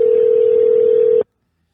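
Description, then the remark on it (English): A loud, steady telephone tone holds for just over a second as a phone call is placed, then cuts off abruptly into silence, with no voices present. “Let's call him. Let's see if he answers, man.”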